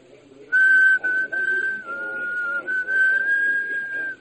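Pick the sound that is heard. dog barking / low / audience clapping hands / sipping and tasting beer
low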